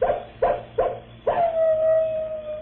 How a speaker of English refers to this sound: Now we've got company. The wolves are out. Yeah. Looky over yonder on that ridge. That old he-wolf Brindle.